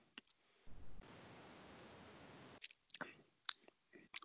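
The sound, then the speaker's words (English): A sip of a 4.0% ABV IPA from a beer bottle: a sustained, soft hissing slurp lasting over a second, followed by a few small clicks and wet mouth sounds, with no talking. “Going in for the sip.”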